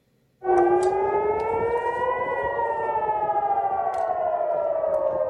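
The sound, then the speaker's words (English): Civil defense warning sirens blare loudly and steadily in Jerusalem, Israel, during multiple rocket attacks from Gaza, their wailing tones slowly rising and falling in pitch after an abrupt start, with no voices present. “Warning sirens blare in Jerusalem and across Israel as the country endures multiple rocket attacks from Gaza.”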